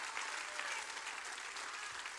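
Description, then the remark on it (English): A church audience clapping hands to thank God for his love, a dense, steady wash of many overlapping claps with no clear individual beats, sustained at an even, moderately loud level throughout. “Is anybody clap your hands and say thank God for his love?”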